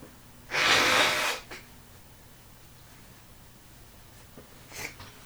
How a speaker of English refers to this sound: Sorry, I'm gonna blow my nose real quick. Give me one quick second.